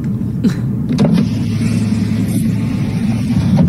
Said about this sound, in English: the guy in this truck was filming and approached slowly to try to make the animal move